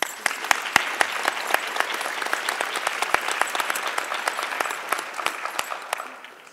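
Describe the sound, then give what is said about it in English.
An audience applauds the guests at the end of an evening event, steadily for several seconds, a dense wash of many hands clapping with sharp individual claps popping out, holding at a fairly even level before easing slightly toward the end. “Can we have an enormous round of applause for you guys, the guests?”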